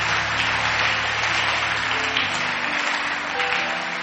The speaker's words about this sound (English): God, give them a mighty clap offering.